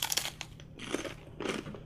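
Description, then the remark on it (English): Crisp crunching of someone biting into and chewing Voodoo Heat kettle chips, with several loud bursts in quick succession and no talking. “She thinks they're too crunchy.”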